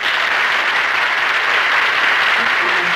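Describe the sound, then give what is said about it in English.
The audience of The Jack Benny Program applauds steadily, a dense, even wash of many hands clapping at a constant loud level throughout, with no voices speaking over it. “They told me there would be applause here.”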